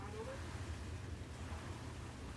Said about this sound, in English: I don't know if you can hear the bubbles. Over the... bubbles.